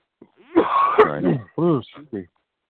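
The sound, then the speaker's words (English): Someone coughs and clears their throat right up against the microphone, a loud, raspy fit of several rough bursts over about two seconds. “You should try to hit the mute button when you're coughing into the microphone like that.”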